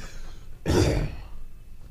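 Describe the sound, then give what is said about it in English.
A single harsh cough and throat clear bursts out, rough and about half a second long, with quiet room tone before and after and no talking. “You think we should get cough buttons?”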